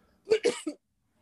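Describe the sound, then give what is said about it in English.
A sharp sneeze in a quick burst of two or three explosive bits of air, loud against an otherwise quiet background with no talking. “Bless you”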